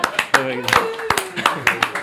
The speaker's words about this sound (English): Very good, yes. Oh, yeah, that deserves a clap.